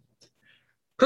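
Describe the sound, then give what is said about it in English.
A couple of faint breathy sounds, then a sudden loud sneeze bursts out at the very end, sharp and explosive, with no talking around it. “I end every sentence with a sneeze.”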